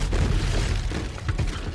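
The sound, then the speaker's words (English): A loud explosion sound effect, a small glowing piece of overloading machinery thrown against a wall and exploding with tremendous impact, with a deep, rumbling low end that roars steadily for nearly two seconds, with crackling bursts flaring up toward the end. “So Switch the Paladin grabs a small, glowing piece of machinery and tosses it at the far wall where it explodes with tremendous impact.”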